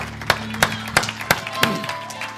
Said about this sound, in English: Give the Lord another hand clap before you're seated this morning. What a great God.